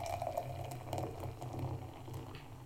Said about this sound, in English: That is some ASMR level like sounds. That pouring is superb.